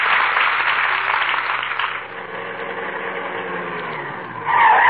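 Car tires skid with a loud, sustained screech of brakes lasting several seconds, the harsh grinding squeal sharpening into a higher shriek right at the end; no voices.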